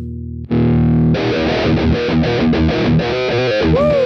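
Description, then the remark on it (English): A heavily distorted electric guitar chugs through a fast, driving riff of evenly hammered chords played with all downstrokes rather than alternate picking, loud, after a brief low droning start. “And it's not like how anyone else in the world would play this riff. They would play it alternate picking.”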